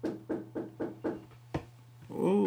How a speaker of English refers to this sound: We got a knock at the door. Come in. Come in. Come in.